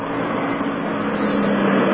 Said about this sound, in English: I think we're coming up on the break. Is that the break? No, it's just a little traffic in the background.